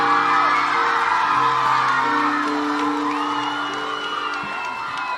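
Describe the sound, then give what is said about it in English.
A crowd cheers and claps steadily for a female rapper being introduced on stage, with high whoops and shouts rising over dense applause that stays loud throughout and eases slightly toward the end. “Come on, clap hands for ….”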